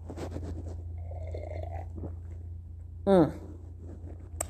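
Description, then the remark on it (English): A brief slurping sip of coffee with caramel macchiato creamer around three seconds in, sliding downward in pitch, preceded by soft mouth clicks and small handling noises over a steady low background hum. “Let me get another sip of coffee and get myself on track here.”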